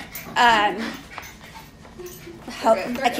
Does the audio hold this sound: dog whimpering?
yes